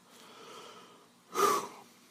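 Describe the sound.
A man sweating in a descending elevator at night pants heavily: one loud, harsh, slightly wheezy exhale bursting out after a second of quiet, faint breathing. It sounds strained.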